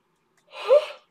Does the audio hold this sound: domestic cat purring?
no